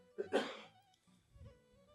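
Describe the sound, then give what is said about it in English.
A single sharp, harsh cough bursts out near the start, then fades into quiet with a faint low murmur afterward. “coughing more than me today.”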